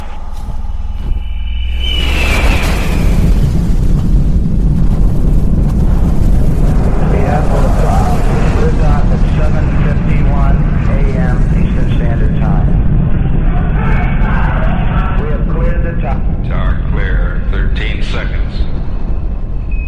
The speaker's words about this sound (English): T-minus 15, 14, 13, 12, 11, 10, 9. Here we have ignition sequence start. The engines are on. 4, 3, 2, 1, 0.